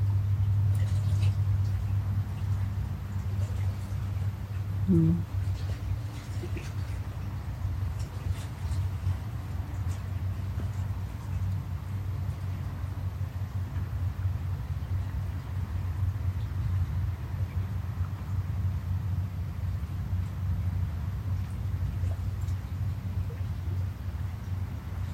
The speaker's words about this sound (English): Trains off in the distance.